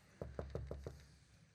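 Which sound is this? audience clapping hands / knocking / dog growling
knocking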